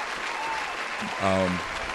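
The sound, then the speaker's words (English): Steady, dense clapping from an audience welcoming a guest fills the whole two seconds, with a short voiced shout or cheer rising over it briefly toward the end. “Round of applause for this, man.”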